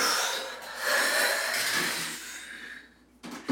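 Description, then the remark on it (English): A strained breath hisses steadily for a few seconds, fades, then gives way to a quick, sharp gasp of air at the end, made during a lung vacuum breathing exercise at the end of a workout. No talking. “And then you work really hard, like you're breathing in, but you can't until you let go.”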